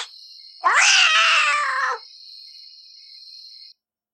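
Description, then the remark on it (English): A single loud, drawn-out meow from Mr. McTuggins, a show cat, rises and then slowly falls in pitch, lasting just over a second, over a steady high-pitched tone that continues after it ends. “Mr. McTuggins Tales is a segment where we entertain our show cat, Mr.”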